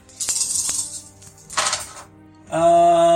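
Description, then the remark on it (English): Six dice being rolled for a persuasion check in a tabletop game: a couple of sharp clicks, then a brief rattling clatter on a hard surface, followed by a steady ringing tone at the end. No one speaks. “Roll me a check.”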